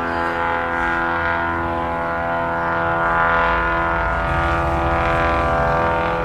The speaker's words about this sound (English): Also, it's the loudest plane ever. It's a medical marijuana dispensary flag behind a plane from by the